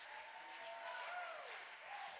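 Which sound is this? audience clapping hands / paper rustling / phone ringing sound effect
audience clapping hands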